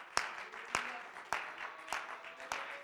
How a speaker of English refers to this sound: Why don't we clap our hands to the Lord this morning? Thank him for this opportunity to be in his house. Thank you, Jesus.